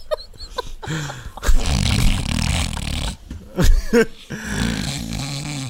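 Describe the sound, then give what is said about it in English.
A voice makes exaggerated mock snoring noises, a few loud rasping snorts with gaps between them, with no other talk. “Snoring on her.”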